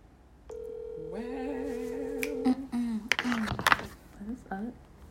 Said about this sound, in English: We're finna call another person.